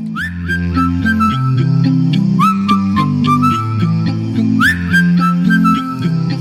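A clear, bright whistled melody with upward swoops rides over close-harmony a cappella voices singing wordless chords and rhythmic parts beneath it, all steady.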